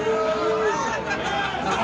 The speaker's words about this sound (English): Don't boo them! Don't boo them!